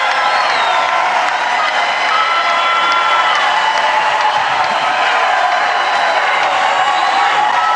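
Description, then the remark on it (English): A large crowd chants and cheers loudly and without pause at Tim Scott's announcement that he is running for president of the United States, a dense roar of many voices with occasional whoops and shouts rising above it. “Here comes the chanting.”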